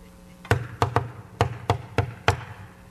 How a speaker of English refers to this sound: Well, we knocked on doors today. Yeah, you did. You tapped on doors.